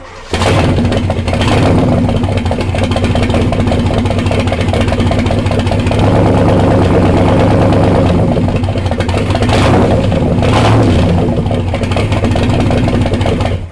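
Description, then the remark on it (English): The V8 engine of a 1966 mid-year Corvette idles with a loud, throaty rumble, punctuated by a couple of sharp revs that surge and fall back to a steady burble. “the engine from the car that the Corvette that I did yesterday”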